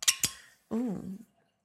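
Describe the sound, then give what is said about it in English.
A cork pops out of a bottle with two quick, sharp snaps, followed by a brief, rising vocal exclamation from someone. “ooh, I just love the sound of the cork popping.”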